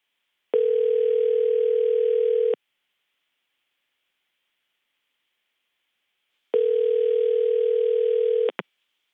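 An outgoing phone call to a cell phone, made by a Washington Post reporter: a ringback tone of two steady, buzzy rings about two seconds long, separated by a few seconds of silence, followed by a short click as the line picks up.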